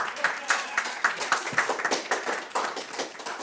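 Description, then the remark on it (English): A short burst of audience applause: a steady run of sharp, bright hand claps at an even, fairly quick pace, holding a moderate level for a few seconds without fading. “Audience, round of applause.”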